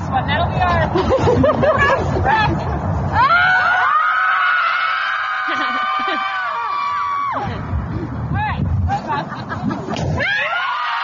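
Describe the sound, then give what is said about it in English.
A crowd of mothers lets out a long, sustained collective scream on a football field in Boston, rising over noisy chatter and laughter, then dissolving back into excited babble and cheers. “They've been getting together recently on a football field and just letting off a whole lot of steam by screaming.”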